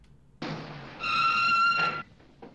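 A staff car rolls up to a guard post with a rush of road noise, then a high, steady brake squeal rings out for about a second as it comes to a stop, followed by quiet.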